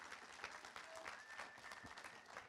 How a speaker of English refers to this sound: So can you give him a massive round of applause as he comes?